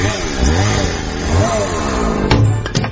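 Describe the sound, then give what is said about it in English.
A chainsaw engine, brought out for a Yule log, revs loudly for about three seconds, its buzzing pitch rising and falling in repeated surges, with a couple of sharp clattering bursts near the end. “Anyone seen my chainsaw?”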